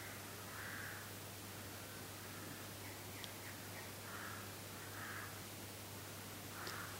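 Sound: birds calling outdoors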